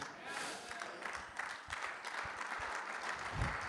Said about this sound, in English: Somebody didn't get it. You need to clap louder. Somebody didn't get that.